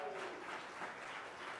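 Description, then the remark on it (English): An audience at the inaugural Social Justice Summit 2019 in Milwaukee claps in a steady, dense patter of many hands, a sustained wash of applause with no voices on top, holding at an even level for its short length. “Social Justice Summit 2019, clap it up for that.”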